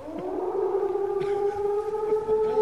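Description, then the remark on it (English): A wolf's howl: one long, mid-pitched, tonal note that swells up slightly at the start and then holds steady and fairly loud for the whole stretch, with no talking. “That wolf is getting a little too close for comfort.”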